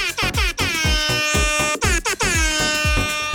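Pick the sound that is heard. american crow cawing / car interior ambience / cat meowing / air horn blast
air horn blast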